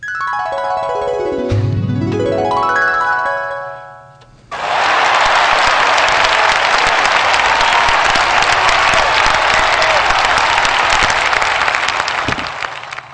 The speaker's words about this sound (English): Cheering.